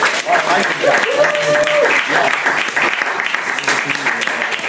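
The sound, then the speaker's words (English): An audience at a live storytelling event claps steadily and loudly throughout, with a few cheers and whoops rising over the dense applause early on before it settles into continuous clapping. “Round of applause for everybody who's come up and told the story so far.”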